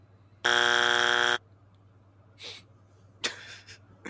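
A game buzzer blares once, a loud, steady, harsh electronic tone lasting about a second, followed by a few faint breathy bursts of noise.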